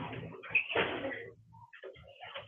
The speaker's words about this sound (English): Pardon me, I had to shut the door.